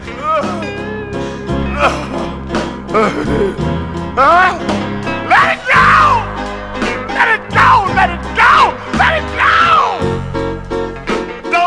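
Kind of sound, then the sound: grunting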